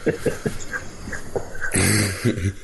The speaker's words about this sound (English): That's why I got the Wolverine growl. Like, when she first got switched, she's, like, kind of crunched, you know, crouched down on her haunches, and she gives this growl, and I'm like, that's fucking Wolverine all over the place.